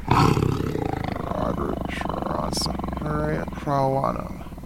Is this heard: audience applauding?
no